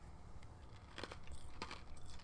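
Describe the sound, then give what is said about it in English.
A few sharp, crunchy bites of someone chewing ice, fairly quiet, with irregular crackling crunches clustered near the middle of the short clip and no talking. “I don't drink ice, I chew it.”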